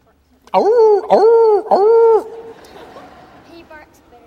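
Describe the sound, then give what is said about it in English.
A person imitates a dog, giving three loud, drawn-out barking yowls in quick succession, followed by quiet background murmur. “He barks better than that.”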